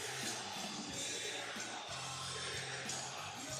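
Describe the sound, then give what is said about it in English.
A dense crowd at a wrestling arena roars steadily throughout, with overlapping yells, whoops and cheering voices forming a loud, continuous wall of noise with no single speaker standing out. “Hey, that crowd is something else, though, man.”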